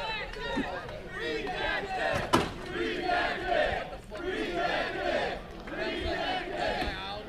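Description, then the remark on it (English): A wrestling crowd cheers and roars loudly and continuously, the noise swelling and dipping in waves, with one sharp bang cutting through early on. “Wow, you hear the crowd.”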